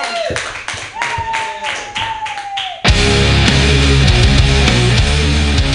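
An audience at a comedy show claps in a brisk, uneven patter for a few seconds, with a thin sustained tone over it, then loud, dense music abruptly takes over and drowns out the applause.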